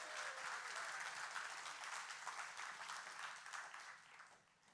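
A crowd breaks into steady applause, dense overlapping clapping that holds strong for several seconds before gradually tapering off toward the end, with no voices heard.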